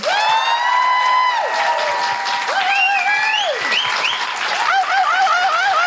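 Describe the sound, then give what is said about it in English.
Steady audience applause for Fern Brady, a dense continuous clatter of clapping, runs throughout while a bright gliding melody with sliding, wavering notes plays loudly over it. “A huge... round of applause and thank you for the incredible Fern Brady.”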